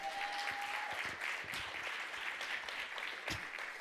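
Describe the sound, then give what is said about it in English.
A standing audience claps for the Lord in a sustained, dense burst of applause, many hands blending into a steady wash of sound with no voices standing out. “Everybody give the Lord a hand clap.”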